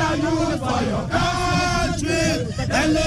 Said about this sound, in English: The protesters singing Arise Ghana Youth as they block a car filled with personnel of the Ghana Prison Service.